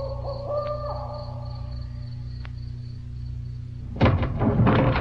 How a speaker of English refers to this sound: And then the hoot owl. I can't explain it, but that frightens me most of all. Such a lonely sound.